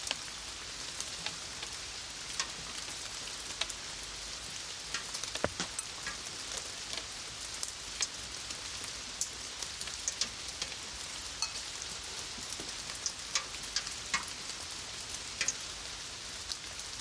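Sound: rain falling outdoors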